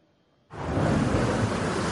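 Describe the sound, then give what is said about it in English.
After a half-second of near silence, a loud, dense roar of heavy rain from a history-making storm in Los Angeles starts abruptly and pours on steadily, a continuous hiss with no voices. “This is what happens when so much rain falls so fast.”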